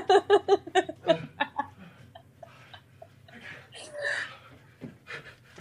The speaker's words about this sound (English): I got the Clorox. You are breathing so heavy.